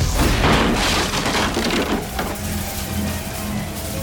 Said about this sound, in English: He was about to push through it when his door blew off its hinges.